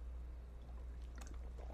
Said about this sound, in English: Taking a drink of water, excuse me.